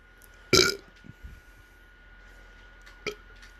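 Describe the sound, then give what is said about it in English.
A single loud, sudden belch bursts out near the start, followed by a quieter, brief gulping sound a few seconds later against a low background hum. “I am so good at belches and so bad at belches.”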